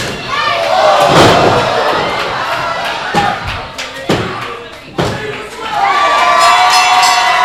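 A folding chair, swung by wrestler Preston at Pat Powers, slams down several times in a wrestling match, sharp loud impacts spaced a second or so apart over a roaring, cheering crowd.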